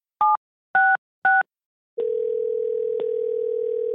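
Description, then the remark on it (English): Three quick touch-tone beeps of a telephone number being dialed, each a short two-note keypad tone, followed by a steady, continuous phone tone that hums on clearly with no voices. “Stephen gave me her phone number and I gave her a call.”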